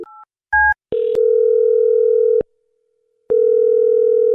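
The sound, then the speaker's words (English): A couple of quick keypad beeps as a phone number is dialed, then a loud, steady telephone tone that drones, cuts out for about a second, and resumes. No one speaks. “All right, well, I'm going to dial her phone number right now and see if we can figure out why she's not getting back to you, okay?”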